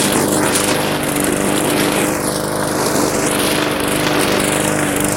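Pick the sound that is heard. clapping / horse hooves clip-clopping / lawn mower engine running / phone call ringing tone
lawn mower engine running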